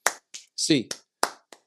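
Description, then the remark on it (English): Sharp hand claps, about five of them, in a quick and slightly uneven rhythm, done as a UCLA eight-clap cheer counted from one to eight. A short voiced shout cuts in between them. “It's an 8-clap time. And 1, 2, 3, 4, 5, 6, 7, 8.”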